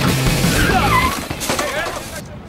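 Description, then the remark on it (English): Tires squeal in wavering streaks as a car brakes hard, skidding over a low engine rumble, with excited voices shouting throughout. “The brake! Oh! Just slow the car down!”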